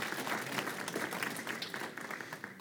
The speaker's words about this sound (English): and now Church of the Incarnation in College Station, Texas, which just became a self-supporting, fully financially solvent congregation as of this last weekend. If you want to give that a round of applause, you are certainly welcome to.